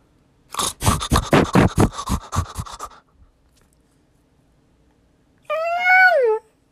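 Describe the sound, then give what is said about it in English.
A cat gives a single drawn-out meow near the end, clear, after a run of quick rhythmic breathy bursts and a pause of near silence. “Meow, meow, meow, meow.”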